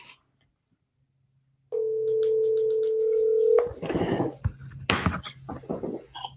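A single steady electronic ringback tone sounds for about two seconds over a quiet line as a show host phones back a listener who texted in, then cuts off into clattering, rustling handset noises.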